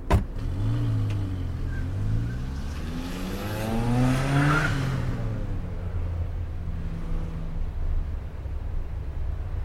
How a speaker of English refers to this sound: After a little bit, she come whipping around in her red car and I hopped in like a cheap fucking hooker.